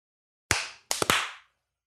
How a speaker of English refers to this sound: All right. Let's do a clap.